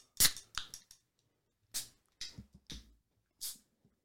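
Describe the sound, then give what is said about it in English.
Cans of light lager beer being cracked open: a string of sharp metallic snaps, each followed by a short fizzy hiss, spread unevenly over a few seconds with no talking. “Yeah, so this is a simple, it's a light lager.”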